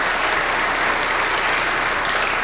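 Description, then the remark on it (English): A large audience claps steadily for Romney during a speech, a dense, even wash of applause that holds at full strength throughout with no voices rising above it. “Applause break for Romney.”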